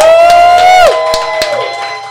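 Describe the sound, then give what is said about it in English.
A live audience cheers loudly, led by a sustained high whoop that slides downward in pitch, followed by scattered claps and fading crowd noise. “Hey, everybody, give us a round of applause.”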